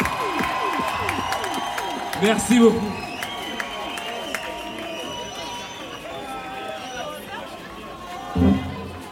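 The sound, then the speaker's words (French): A concert crowd in Orléans cheers and claps loudly and steadily for the band, with shrill whistles and shouts running through the din, while a man briefly speaks over the noise twice. “Faites du bruit, Orléans.”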